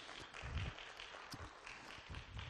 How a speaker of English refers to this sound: Thank you, worship team. Come on, give them a good round of applause. They did such a great, great job.